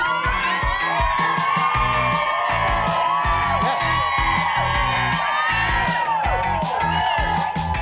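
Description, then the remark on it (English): A loud morning-show studio crowd, many from Tucson and some from South Dakota, cheers and whoops continuously, with high yells and shouts piercing a dense roar of voices and clapping, sustained at full volume throughout. “Nice crowd.”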